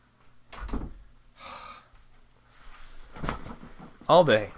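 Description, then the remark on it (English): A cat pushes a door open: a soft thump, a brief scraping hiss, then a rising creak near the end, with some faint muffled vocal sounds in between. “The fucking cat opened the door, people.”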